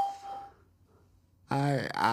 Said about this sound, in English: Hello, welcome to Skype Core Testing Service. After the beep, please record a message. Afterwards, your message will be played back to you.